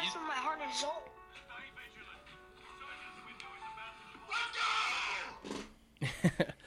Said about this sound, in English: So, I'm sorry about the let's go screaming part, but anyway, it's a TikTok this dude made, and it said, what would make me freak out like this? And it's basically, he's gaming, they're doing some kind of game, I don't know if it's Call of Duty